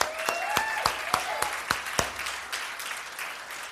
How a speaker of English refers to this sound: I'd like all our veterans to stand. We got a few of them in the crowd. All our veterans. Man, that's awesome. Give them a hand.